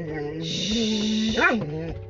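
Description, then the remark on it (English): A female dog in a car barks at another puppy, a drawn-out, high, whining cry that rises and falls in pitch for about two seconds over a steady background hiss. “The dog, my baby girl, sees another puppy.”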